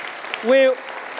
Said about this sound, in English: Thank you so much, Dr. We're going to hear a lot more from you a little bit later on. Go and grab a seat. Give Dr. Luke a round of applause.